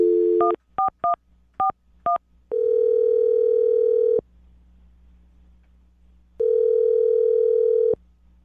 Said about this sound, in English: All right, I'm going to dial the phone number right now, get him on the phone, and we'll find out what happens, okay? Okay. All right, here we go.